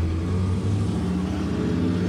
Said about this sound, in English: Bro, that's your car driving by again. Yeah, that's my quiet car.